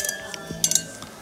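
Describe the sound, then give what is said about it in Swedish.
Glasses of Christmas beer, including Melleruds prima julöl, clink together in a quick toast, a few bright, ringing taps, with faint background murmur and a soft low thump. “Skål! Skål!”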